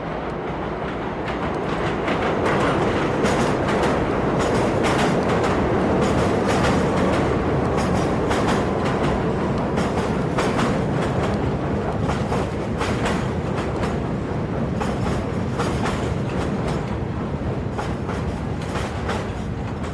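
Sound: train running on rails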